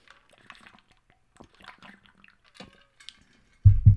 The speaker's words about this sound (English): Apologies, I'm going to take a sip of water. My voice is getting a little hoarse.